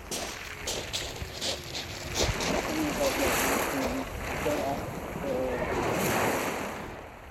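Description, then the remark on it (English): Waves wash and break along the Kent coast in the south of England in a steady, swelling roar that rises and falls, with wind noise and faint, indistinct voices. “And so we travel to the Kent coast in the south of England.”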